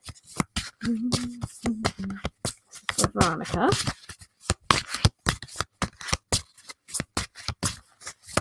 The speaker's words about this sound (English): Boy, they want me to shuffle this deck, don't they, for you? Okay, it's coming out. Let me restart here. There we go.